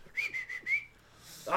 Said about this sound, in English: As they're they're whistling to the tune in order to defeat him, apparently.